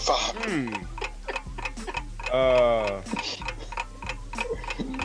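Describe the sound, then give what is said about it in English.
A 30-second countdown clock ticks steadily, about two sharp ticks per second, running throughout while people talk and exclaim over it. “You got 30 seconds to name 5 girls whose DM you would like to jump in and sling some dick to. Your clock starts right now.”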